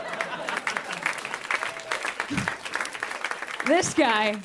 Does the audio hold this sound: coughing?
no